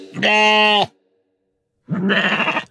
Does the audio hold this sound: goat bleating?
yes